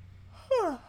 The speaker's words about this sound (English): Oh, no. Oh, I have the yawns.